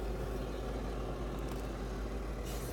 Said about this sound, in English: Is this guy going to turn off his engine? Can that even be heard?